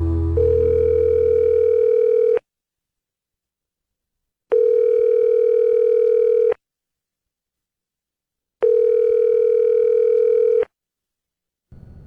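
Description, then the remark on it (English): A telephone ringback tone repeats three times, each steady electronic ring lasting about two seconds with equal pauses of silence between, loud and clear while a call to the GX94 Groundhog waits to be answered. “He might not actually pick up the phone this time.”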